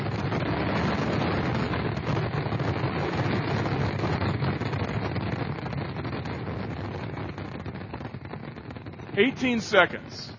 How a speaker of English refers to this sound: A 30-minute fireworks display in 18 seconds. It could have blown up San Diego. I mean, they're suing the company that ran the fireworks display, but that's literally what happened.